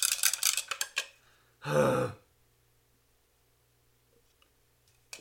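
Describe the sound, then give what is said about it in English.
A smoky frying pan is put back on a stove burner, clanking and rattling against it in a quick cluster of metallic knocks, followed by a loud, rough half-second burst, then near silence with one faint click. “I am now going to take my pan and put it back on the burner, even though it's smoky, ….”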